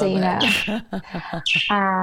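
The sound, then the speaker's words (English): A pet bird chatters in a loud, speech-like babble, mixing talking-style syllables with sharp, high chirps over about two seconds. “My bird's talking.”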